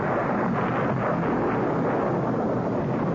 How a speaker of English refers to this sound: That storm last night shook this old house like a penny shaking away. I lay trembling in my bed while it crashed its way towards us, then burst in a roar overhead.